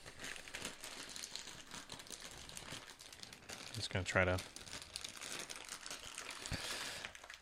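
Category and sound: household object, bag being opened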